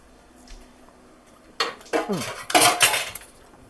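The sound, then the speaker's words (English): After a quiet start, a utensil scrapes and clatters against a metal baking pan lined with parchment paper in several rough, uneven bursts as a thick honey, maple syrup and vanilla mixture is poured and spread, with no one talking. “And then we're going to put this into a baking pan.”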